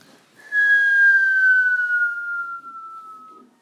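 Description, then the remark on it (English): A single loud, steady whistle of a bomb falling near a church in London during a German bombing raid in World War II, on a Sunday morning, its pitch sliding gradually downward for about three seconds before cutting off, with no explosion following and no voices. “Germany had been bombing London for months when suddenly all the members in the church on a Sunday morning hear the familiar sound of a whistle.”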